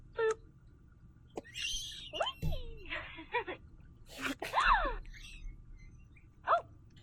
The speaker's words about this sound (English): Like a gasping sound.